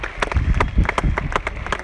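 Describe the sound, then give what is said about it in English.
A golf tournament crowd cheers and applauds Ernie Els, dense rapid clapping holding steady and fairly loud for about two seconds, with no one speaking over it. “Ernie Els getting a huge cheer from the crowd.”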